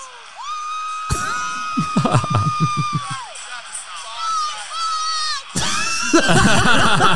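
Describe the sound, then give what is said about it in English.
A woman's shrill voice screams a repeated 'Aussie, Aussie, Aussie' chant over a loud, roaring crowd at a fight in Jacksonville, Florida, with bursts of cheering and whooping rising around her and swelling near the end. “And through the whole fight, she's screaming, Aussie, Aussie, Aussie.”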